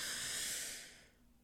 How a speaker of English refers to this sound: So we're going to breathe in through the nose.